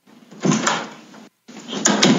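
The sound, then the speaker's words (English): A heavy door opens with a scraping swing, then after a brief silence closes again with a rattling thud, two fairly loud movements and no talking. “what's with you in that door?”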